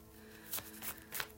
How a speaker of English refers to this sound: Let me shuffle some cards.